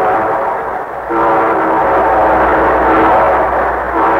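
A loud train horn blares in long sustained blasts, its harmonic chord breaking briefly before sounding again over a low rumble of the moving train, opening the Railroad Hour radio show. No one speaks.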